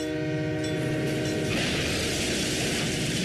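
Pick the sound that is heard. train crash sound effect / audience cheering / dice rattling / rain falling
train crash sound effect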